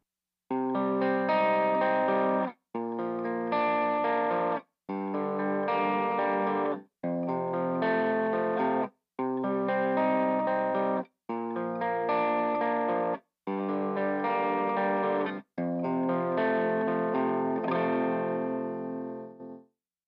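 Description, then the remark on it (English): Electric guitar through a low-gain overdrive pedal (high-cut off, gain switch low, volume at 9 o'clock, drive at 11, tone at 2) and an AC15 amp for a clean tone, strummed chords ringing out in eight steady blocks with short breaks between, the final chord sustaining and fading; no voices. “We'll be using it with our AC15 to finish off our clean tone.”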